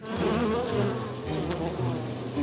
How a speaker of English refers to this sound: the choice to be a good friend and invite his neighbor Rick to church or tend a colony of angry bees.